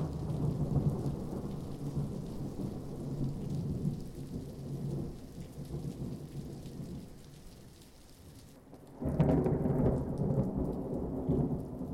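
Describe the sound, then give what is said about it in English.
A thunderstorm: heavy, steady rain hisses throughout while deep thunder rumbles low, easing briefly before a louder roll of thunder surges in near the end. No voices. “A storm brews, challenging the delicate balance of Luna and Buzz's love.”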